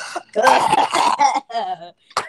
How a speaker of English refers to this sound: Get all your coughs out now.